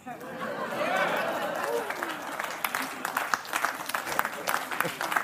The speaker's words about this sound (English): A mixed reaction from the not totally atheist crowd here.